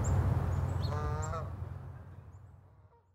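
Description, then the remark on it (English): Birds call outdoors in the woods at Sapsucker Woods, with a honking, goose-like cry standing out briefly near the middle over a low, steady rumble of outdoor background noise that slowly fades. “We went back out to Sapsucker Woods to listen to the birds”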